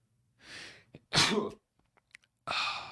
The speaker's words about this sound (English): I'm about to sneeze. Hold on.